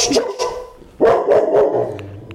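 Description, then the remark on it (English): A dog named Tuffy lets out a series of sharp, loud barks in quick irregular bursts, a couple early on and a louder cluster after a brief pause. “Yeah, Tuffy. Thank you. Thanks for the warning.”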